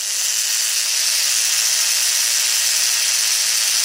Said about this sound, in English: Okay, that sound that you just heard, which sounds like the lawnmower or something, that's a vibrator from around 1905.